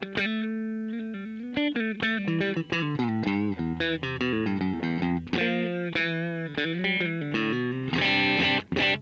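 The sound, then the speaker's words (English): An electric guitar played dry through an amp profile, with no effects, compressors or pedals, in a slightly overdriven, gritty tone. It plays a busy run of chords and single notes, loud, with no voices; the phrase ends in brighter strummed chords. “A bit more overdrivey tones.”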